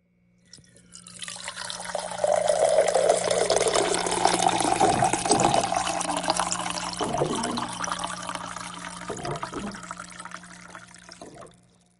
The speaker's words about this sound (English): But we'll be right back after this sound of water in a glass.